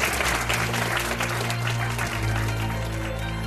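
Steady applause from an audience at a Commonwealth Club of California event, many hands clapping in a dense, continuous patter at a fairly loud level, with a low musical tone sustained underneath.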